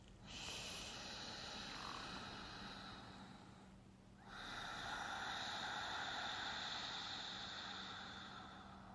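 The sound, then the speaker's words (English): A person makes two long, snore-like breaths in a row through the throat with the mouth closed, a soft raspy rattle with the tongue held against the roof of the mouth, imitating a baby's gentle snore, quiet with no talking. “When you release the air the same way with everything in the same place, it sounds like a baby snoring when done correctly.”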